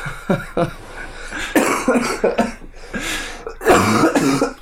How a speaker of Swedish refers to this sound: Det där är inte ett bra skratt. Hon övergår till host bara. Nej, det är... Men jag har sån jävla pollen, så jag har hostat sjukt mycket. Jag har svårt att andas. Så jag kan typ inte börja skratta, för då...